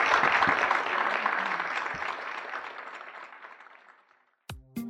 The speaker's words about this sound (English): And I wish that you'd now give our panel a rounding applause for their participation today. Thank you.